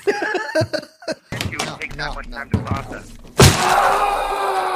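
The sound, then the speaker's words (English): An agitated voice groans and shouts, then a man's fist slams hard into a wall with a loud thud, followed by a rough, noisy rumble that lingers after the impact. “This might be the angriest, because he punches that wall.”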